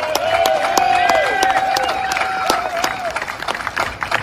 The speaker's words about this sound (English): Let's give give them a big round of applause again.